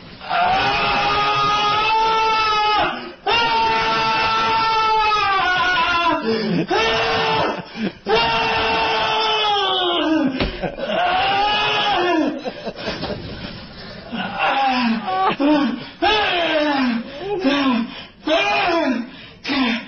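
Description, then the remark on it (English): Loud, drawn-out orgasm moans and yells from a voice, rising and falling in pitch in long wavering cries that continue almost without pause, with short breathy gasps between them. “Well, here is the loudest orgasm.”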